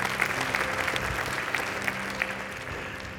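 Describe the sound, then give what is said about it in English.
An audience claps steadily, a dense wash of many hands with sharp individual claps poking through, holding at an even loudness for the whole stretch with no voices on top. “Thank you for clapping so I can get my composure back.”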